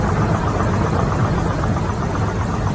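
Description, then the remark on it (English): A steady, dense low rumble with a constant mechanical vibration, like an engine droning, rattling on without pause or change in loudness, heard inside an airplane cabin during turbulence. No voices. “And then listen to that vibrating. It sounds like a washing machine that's out of balance during a spin cycle.”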